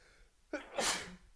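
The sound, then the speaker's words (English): A single sneeze made off-mic, muffled: a brief voiced intake followed by a sharp, hissing burst that quickly fades into quiet room tone. “I did it off mic, so you might've missed it, but oh, is there anything better than a sneeze?”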